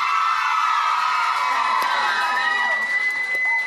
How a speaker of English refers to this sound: I really appreciate your energy, but also listening and then cheering at the right times.